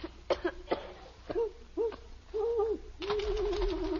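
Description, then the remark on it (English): An owl hoots several times in short, low, wavering calls, ending in a longer trembling hoot, with a few sharp rough bursts like coughs mixed in. “It's an owl, Margaret. That's all it is, just an owl.”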